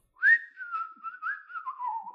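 A very high, pure whistle-register singing tone holds for about two seconds, wavering slightly and drifting gently downward at the end, heard alone with no talking.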